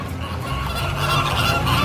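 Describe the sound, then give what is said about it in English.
Thousands of pink flamingos and other wading birds honk and call continuously as they land on a lake near the Gulf of Tunis in winter, a dense overlapping chorus that is fairly loud and steady, with no voices. “In the winter, thousands of pink flamingos and other wading birds land on the lake, and in the early morning light, they look like drifts of bougainvillea petals floating on the water.”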